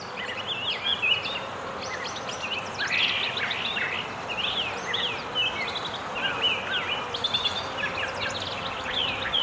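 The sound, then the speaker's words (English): A dense dawn chorus of many birds chirping and trilling continuously in backyard trees, layered over the steady, low droning hum of a nearby beehive full of buzzing bees. No one speaks. “Earphone listening is recommended in this brief sonata from the birds and the bees.”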